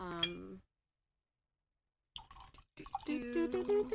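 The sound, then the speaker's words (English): A brief ringing clink, a stretch of silence, then wine splashes and gurgles into a glass, the pour's tone rising steadily as the glass fills. “I'm going to re-up my wine very quickly.”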